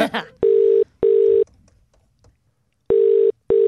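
A telephone call placed on the Morning Rumble radio show rings out: loud ringback tones in a double-burst pattern, two quick pairs separated by a short pause, preceded by a brief burst of noise as the call connects.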